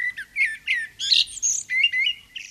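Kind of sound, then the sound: bird, warbler song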